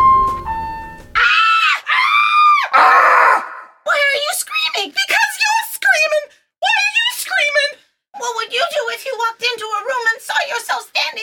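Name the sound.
screaming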